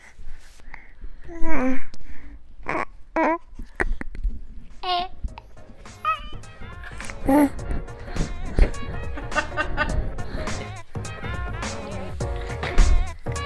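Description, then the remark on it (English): A baby boy snorts and breathes noisily into a microphone he is trying to put in his mouth, with rough bursts of breath broken up by short squeaky coos and babbles. The sounds come in an irregular stream, getting busier toward the end. “Now he's snorting in the mic.”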